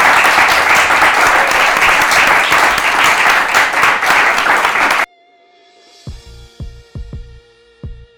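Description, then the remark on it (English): A dense burst of audience applause for a panel, loud and steady for about five seconds, cuts off abruptly and gives way to a quiet musical passage with soft, low thumping beats and a sustained tone. “And so let's give my panel a round of applause.”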